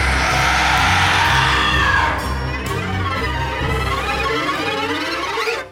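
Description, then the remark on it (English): A loud, dense wall of screaming and shrieking voices, like a frightened crowd, rising harshly for a couple of seconds and then continuing slightly softer until it cuts off abruptly. “Give a sinister scream”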